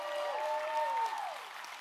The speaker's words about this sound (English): And he's standing right there in the back. He just walked in the door. Y'all turn around and give Forrest a great big round of applause.